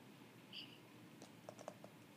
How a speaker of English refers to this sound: She's typing, y'all. She's typing.